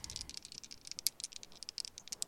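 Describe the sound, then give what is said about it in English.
Dice rolled for a game-of-dice check clatter and tumble across a hard surface, a quick run of sharp, bright clicks and rattles with irregular rhythm, fairly quiet, with no voices. “Roll the die and then add your proficiency.”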